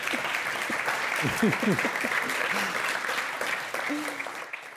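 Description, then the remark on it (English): Steady audience applause for panelists who just finished a lightning round, a dense wash of clapping from a sizable crowd, with a few voices calling out and murmuring underneath before it gradually tapers. “Let's give them a round of applause for getting through that.”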